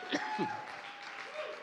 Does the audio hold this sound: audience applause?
yes